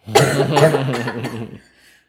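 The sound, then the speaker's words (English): A loud fit of raspy coughing, several harsh bursts run together over about a second and a half, then it drops to quiet. No one speaks. “Sorry, my cough's coming out.”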